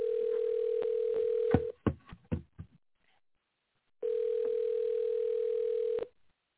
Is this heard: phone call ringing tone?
yes